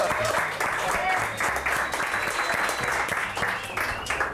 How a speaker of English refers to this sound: It's called the slow clap. I've heard about it. It's not known by everyone everywhere.